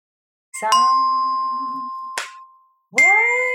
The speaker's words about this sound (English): So I would use some chimes, which I have here.